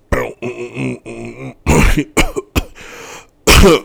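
coughing and throat clearing

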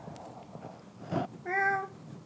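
cat meowing

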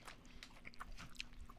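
chewing beef jerky

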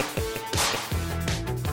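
whip crack

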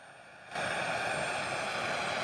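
helicopter flying overhead

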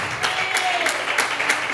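audience applauding

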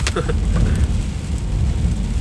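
heavy rain heard

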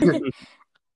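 throat clearing

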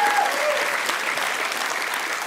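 audience clapping

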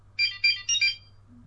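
phone notification sound

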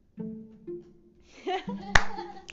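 hand clapping

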